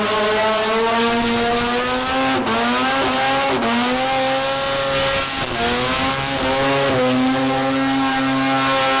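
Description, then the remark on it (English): A loud 13B supercharged car engine revs hard and continuously at a skid event, its pitch rising and dipping with each throttle blip, with tire squeal and skidding noise layered in, sustained throughout. “A clean car does a better skid”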